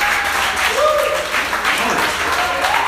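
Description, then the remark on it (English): An audience applauds steadily at the end of a presentation, dense clapping at a loud, even level, with a few voices calling out faintly through it. “Oh yeah, you guys can round of applause.”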